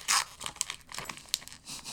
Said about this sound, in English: I wanted you to like Inception, open it on the podcast because it's so you're really getting the unwrapping sounds on the pod as well. Can you hear the paper?